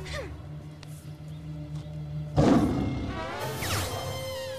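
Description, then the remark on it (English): After a low steady hum, a loud tiger roar sound effect bursts in abruptly, rough and full-bodied, then trails off over about two seconds into wavering, growling tones. “I didn't realize that Lizzie had like a Tiger King like sound effect.”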